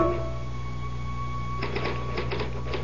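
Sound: typewriter typing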